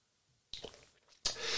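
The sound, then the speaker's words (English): Wet sipping sounds of someone drinking coffee after a brief silence: a soft slurp followed by a louder, hissing draw of liquid that runs to the end, with no talking. “excuse me a second, I'm just going to have another sip of coffee here.”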